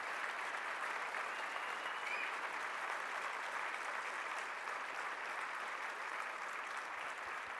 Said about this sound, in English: Huge round of applause for our amazing guests.